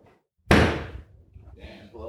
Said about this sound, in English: no, close it. It's sound waves. You gotta slam the door.